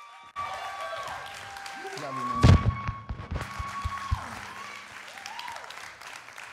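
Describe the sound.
An audience breaks into sustained applause with some cheering to welcome a pastor, filling the room for several seconds, while a man's voice briefly speaks over the clapping near the middle.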